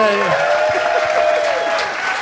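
A loud, steady burst of audience applause, dense clapping filling the whole stretch, with a held vocal tone or cheer drifting over it before easing slightly at the end.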